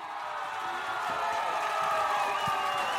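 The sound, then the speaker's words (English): A dense, steady wash of crowd applause with cheering mixed in, played as a welcome sound effect, holding at an even, fairly loud level throughout, with no clear individual claps standing out and no one talking. “Yeah, I couldn't find hand clap.”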